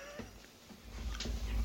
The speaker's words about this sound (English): Oh, the cats are fighting. Cats are fighting. You can probably hear the cats fighting. The baby Patty, who's 7 months, is getting horny. She's getting horny for her brother.